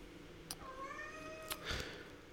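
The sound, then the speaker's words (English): A cat lets out one long, drawn-out meow that rises and slowly falls, fairly soft, with a couple of brief clicks around it and no talking. “Hello, cat.”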